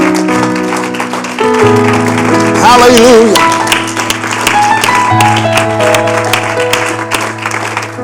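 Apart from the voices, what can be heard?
audience applause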